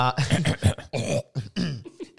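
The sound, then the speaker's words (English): A loud series of rough, phlegmy throat-clearing bursts, five or six in quick succession with brief gaps between them, and no talking alongside. “Excuse me, just clearing my throat.”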